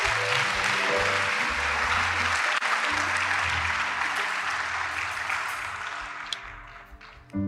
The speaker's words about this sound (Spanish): Dale un fuerte aplauso a tu Dios.